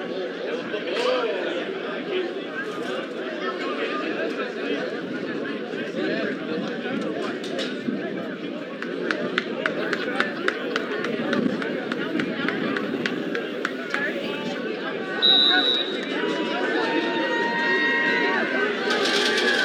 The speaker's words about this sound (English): You're going to hear people go, whoa, at the beginning of this clip.